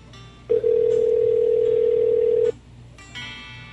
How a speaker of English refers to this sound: I was calling his personal phone. I got to call the bar.